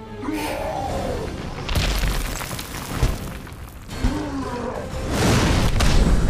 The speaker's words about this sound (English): Green Arrow, what was that? Thunder of the gods, Flash. Thunder of the gods.